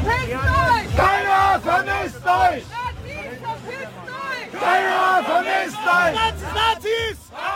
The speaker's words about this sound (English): As the Munich Security Conference continues, thousands of demonstrators gathered across the city as part of various anti-war protests. Anti-NATO protesters, pacifists of various backgrounds, or pro-Kurdish supporters shouted their slogans.